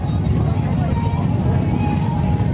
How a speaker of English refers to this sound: It is the 82nd annual Bike Week. Do you smell that? It's not just the roar of the bikes, it's also the spectators watching all the bikers.